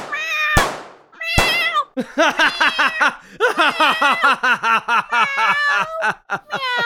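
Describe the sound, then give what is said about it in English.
A human voice imitates a cat, letting out two drawn-out yowls followed by a rapid string of short, loud, bouncing meows, insistent. “Meow! Meow! Meow! Meow! Meow! Meow!”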